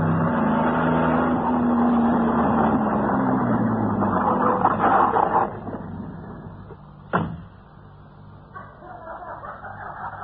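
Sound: car engine running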